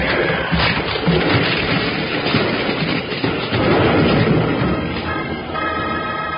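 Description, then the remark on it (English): A runaway wagon with locked wheels crashes into a barn: a loud, continuous rumbling and splintering clatter lasting several seconds, ending with a ringing, tonal screech as the din settles. No one speaks. “Something's wrong. The wheels are locked. Get on quick, Jingles. We're going to crash.”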